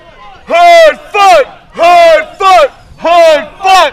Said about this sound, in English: Hoodfoot! And the crowd goes randomly crazy for Hoodfoot. I love this.